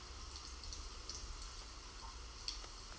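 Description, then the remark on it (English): Steady, hissing patter of rain fills the background, a continuous soft wash with faint scattered drips and ticks, heard alone without any voices. “Hearing the rain in the background.”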